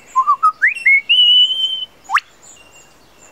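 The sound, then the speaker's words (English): A male lyrebird in a forest gives a run of clear rising whistles, then produces two sharp, mechanical clicks imitating a camera shutter, one after a short pause and another at the very end. “That was a camera shutter. And again.”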